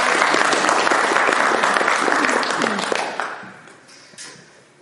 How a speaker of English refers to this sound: Thank you. You love that story. Give Dave a round of applause.